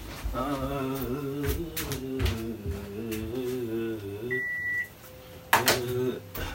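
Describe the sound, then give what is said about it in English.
An air conditioner that was blowing dry air is switched off with a single short, high-pitched electronic beep, amid sharp clicks and thumps and a wavering low hum that drops away after the beep. “Hold on 1 second, let me turn off this air conditioner.”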